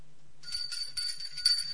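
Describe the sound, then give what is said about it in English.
A small, bright bell rings rapidly and repeatedly, a continuous jangling trill with a few soft low knocks beneath it and no voices. “For the bell of change hath rung.”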